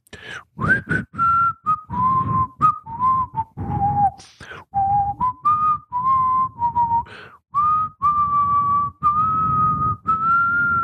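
A single guitar chord is struck, then a clear whistled melody plays for about eleven seconds, moving through a string of sustained notes, with short sharp strummed attacks punctuating it underneath.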